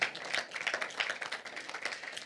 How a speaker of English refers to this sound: Yeah. You can clap, yeah.